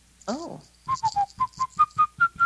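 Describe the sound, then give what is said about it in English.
Someone whistles a short melody, the theme from 1776, about nine clear, evenly spaced notes gradually climbing in pitch, after a brief breathy sound at the start. No talking. “I whistled the theme from 1776 the entire time.”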